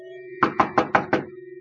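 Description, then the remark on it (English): Five firm knocks on an apartment door in a steady, even rhythm, distinct, with a faint steady hum in the background and no voices. “She lived in the apartments across the street, and I went over and knocked.”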